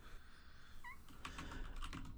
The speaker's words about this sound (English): Did you hear that soft little meow? Did that make it on the recording?